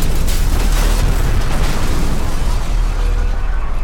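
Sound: bomb explosion sound effect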